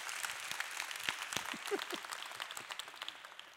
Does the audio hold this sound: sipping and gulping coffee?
no